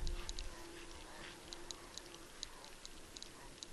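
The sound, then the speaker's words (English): Faint, quick clicking in irregular bursts from the hooves of a small bunch of caribou running past, set against a low, steady background hum. “Listen to the clicking of their hooves.”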